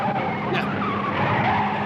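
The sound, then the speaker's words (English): A car swerves hard in a film scene, tires skidding and squealing across the pavement, a loud, continuous screech lasting a couple of seconds with engine noise underneath. “And he swerves around, and he goes crazy.”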